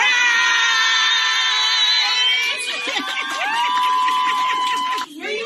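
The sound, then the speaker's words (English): Coworkers and friends erupt in loud, overlapping shouts of surprise, high-pitched cheers and whoops as a New Jersey father-to-be walks into his surprise baby shower, a room full of cakes and balloons; the noise stays steady for several seconds before a brief dip near the end. “A New Jersey father-to-be was blindsided with a big surprise baby shower for him, put together by his coworkers.”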